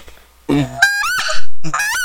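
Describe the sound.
A snow goose call blown to imitate a speckle-belly goose: a quick run of three or four loud, high, yelping honks that break and warble, with no talking.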